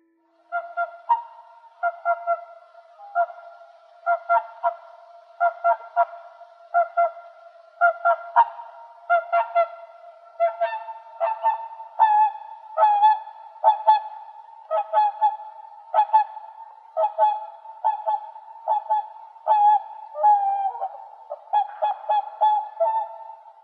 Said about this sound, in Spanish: El sonido sorpresa de hoy fue el de un animal muy hermoso que muy pocas veces tenemos la oportunidad de ver. El sonido sorpresa de hoy fue el de un cisne.